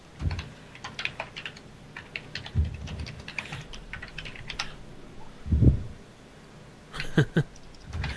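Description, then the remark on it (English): Someone types a message on a computer keyboard, with irregular bursts of clicking keys broken by brief pauses and a few heavier thumps, like firm spacebar presses. No one speaks. “message in the board that he's typing off.”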